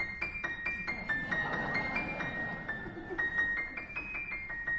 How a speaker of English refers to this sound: Now, this is where the audience participation... for this tune, I think it's probably best to whistle, and you'll understand why. It sounds like this.